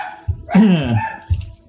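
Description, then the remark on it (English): Dogs bark excitedly as food arrives, a few sharp, loud barks in quick succession with a drawn-out, yelping bark in the middle, no talking over them. “Food has showed up, of course. And my dogs go crazy.”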